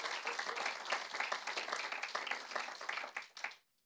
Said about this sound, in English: Yeah, let's give them a clap.